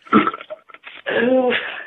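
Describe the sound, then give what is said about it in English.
A loud burp rumbles out in a long, croaky drawl, its pitch wavering and sliding downward, after a short guttural gulp at the start. No talking accompanies it. “I'd rather burp it up than explosive diarrhea.”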